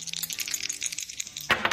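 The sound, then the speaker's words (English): Dice are rolled across a hard surface in quick, dense rattling clicks, ending in a louder burst of tumbling as they land and settle, in a game of guessing an even or odd total; they come up four and four, making eight. “All you have to do, we're going to roll the dice and you call whether it's going to be an even or odd number.”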